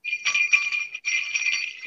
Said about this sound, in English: Oh, Santa's bells are ringing. They're ringing.